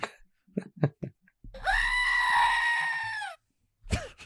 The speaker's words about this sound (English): There it is. Screaming goat.